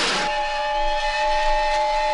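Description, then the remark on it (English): A loud steam whistle, Roger's head turned into a steam whistle after he gulps a drink, blows after a short burst of hissing steam, holding a steady, shrill chord for about two seconds with breathy hiss underneath and no voices. “A moment later, there was a loud rumble, and Roger's head turned into a tune steam whistle.”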